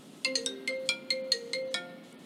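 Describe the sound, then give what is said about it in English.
A mobile phone ringtone plays a quick, bright electronic melody of about seven chiming notes in a steady rhythm, fairly clear, with no talking. “My god, it's my phone. Let me pick this up real quick.”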